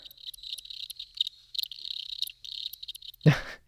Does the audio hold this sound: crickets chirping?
yes